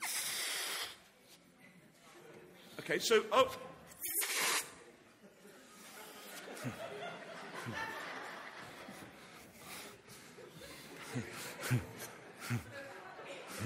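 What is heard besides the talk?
blowing up a balloon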